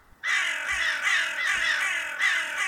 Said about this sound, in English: These crows were not trained to attack or to be mean in any way. They just got a bit protective of their general.